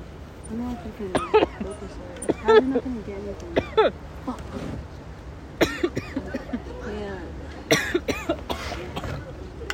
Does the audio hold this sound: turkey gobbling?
no